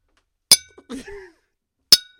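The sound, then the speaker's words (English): Two bright glass clinks about a second and a half apart as glasses are clinked in an Easter toast, each ringing briefly, with a short murmur of voices between them. “Cheers me, buddy. Yeah, cheers.”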